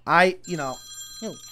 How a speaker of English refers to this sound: Who didn't turn their phones off? I thought I turned it off.